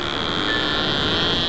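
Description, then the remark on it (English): A fishing boat's reel winding in a catch: a steady, loud mechanical drone with a high, thin whine running through it, unbroken for the whole moment, with no voices. “That fishing boat reeling in fish?”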